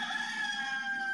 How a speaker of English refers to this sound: was that rooster crowing in the background. That's what I thought about